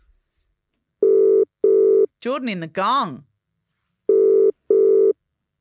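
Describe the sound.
A telephone line ringing out on a call to Wollongong, with two double-burst rings, each a steady mid-pitched tone pair, separated by a short stretch of a man talking.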